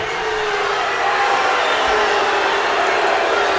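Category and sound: crowd, arena crowd booing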